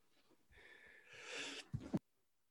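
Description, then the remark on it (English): A fairly loud single sneeze: a rising, breathy intake builds for about a second, then breaks into a sharp double-burst release. No one talks during it. “Bless you.”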